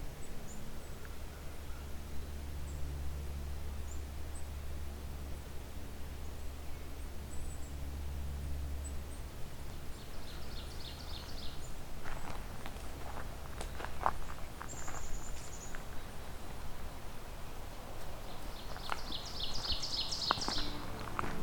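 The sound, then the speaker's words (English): A black-capped chickadee gives a few high, thin squeaks and buzzy call notes, scattered in short bursts over a steady low outdoor hum. “And little squeaks.”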